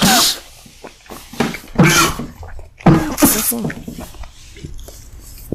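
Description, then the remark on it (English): Several harsh, explosive coughing bursts come in an uneven sequence, loud and raspy, separated by short quieter gaps with faint breathy sounds. “Are you really coughing?”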